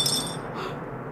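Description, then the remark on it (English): A sudden metallic crack as a knife blade shatters with a wrench, with bright ringing overtones that quickly fade into a dull, brief rattle of the pieces falling to the ground. “His mind leaves the knife point, and with a wrench and a crack, the blade shatters and falls to pieces on the ground.”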